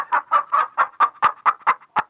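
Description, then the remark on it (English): A hen clucks in a steady run of about ten short, throaty bursts, fairly loud, with no other sounds around it. “Well, don't go to Mexico, you crazy chicken.”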